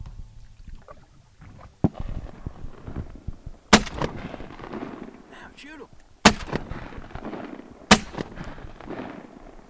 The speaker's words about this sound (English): And a warning here for listeners, if you're sensitive to the sound of gunshots, you want to hit pause or step away from the radio at this time.